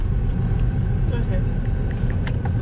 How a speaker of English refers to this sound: Oh, there's a car behind us.